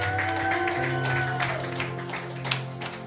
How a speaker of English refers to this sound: Give the Lord a clap offering. Oh, somebody give the Lord a mighty clap offering.